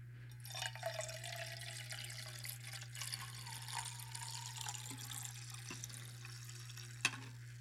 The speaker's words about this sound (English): And while you're turning, I'll pour myself a hefty cup of coffee.